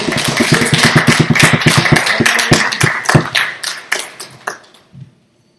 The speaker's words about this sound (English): Let's go ahead and give him some applause. As he comes.